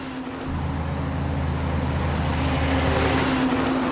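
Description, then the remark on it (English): A vehicle rolls past on a road running along a river, its deep engine rumble kicking in after a moment and swelling with a steady wash of tire and road noise; no one speaks. “There is a road running along here used by tourists, fishermen, and a lot of logging trucks.”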